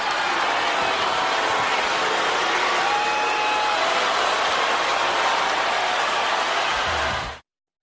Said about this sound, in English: Okay, so if you listen to it again, you can hear, like, the crowd, they're so pumped up to be at the VMAs that they'll cheer for anything.